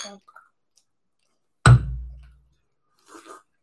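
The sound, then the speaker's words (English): Glasses knock together once in a sharp toast clink at a brewery, with a brief resonant tail, followed after a pause by faint, low voices. “Cheers. Cheers, bro.”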